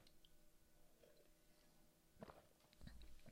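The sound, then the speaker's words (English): Someone takes a quiet sip of coffee: soft wet mouth noises and a swallow, followed by a couple of small clicks and a low knock near the end. “Let me get a sip of my coffee here.”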